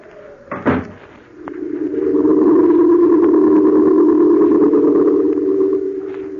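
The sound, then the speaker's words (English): A person leaving casually shuts a door behind them with one solid thud near the start, then a steady low droning tone swells up and holds beneath the rest of the scene. No one speaks. “I shut the door behind me, very casually, just as if I really were going to London.”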